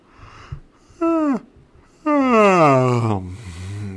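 A faint, brief clink like a drink glass, then a short voiced groan and a long, loud yawn that slides downward in pitch and trails off into a low breathy exhale.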